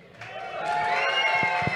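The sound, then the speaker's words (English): A crowd at an event co-sponsored by AFP breaks into applause and cheering for AFP that swells after a brief moment and holds steady, a dense wash of clapping and voices with a few low thumps near the end. “Let's hear it for AFP.”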